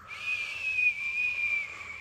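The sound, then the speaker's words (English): A voice imitates a whistling icy wind with a steady, breathy high whistle that holds for about two seconds, moderately loud, with no talking. “Well, an icy wind grew. First, it whistled.”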